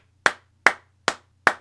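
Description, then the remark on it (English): Four crisp hand claps from a single person, evenly spaced at a slow, steady pace, fairly loud with nothing else in between. “We applaud you.”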